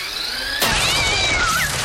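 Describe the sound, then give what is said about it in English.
A pet cat yowls in long, wavering, high-pitched cries as a generic Roomba-type robot vacuum is turned on on the floor and attacks it, its loud burst of mechanical whirring kicking in and continuing underneath. “Okay, she puts down like a sort of a, you know, generic Roomba type of vacuum on the floor, turns it on, and it attacks her pet.”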